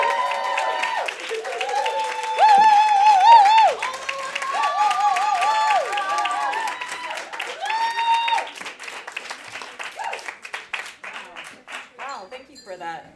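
A crowd claps steadily while people cheer and let out high, sliding whoops and whistles over the applause, which swells early and then tapers into scattered claps.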